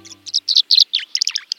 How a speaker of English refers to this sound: A flash of glittering dark blue cuts through the gray of late February as a male tree swallow glides low over a cattail marsh. The tree swallow's liquid notes hint at spring's approach.